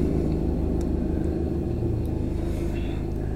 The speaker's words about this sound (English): Damn, do you hear that? That's a fucking helicopter, if you can guys hear that.